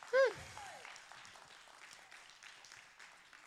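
audience clapping

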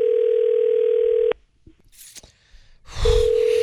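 telephone dial tone

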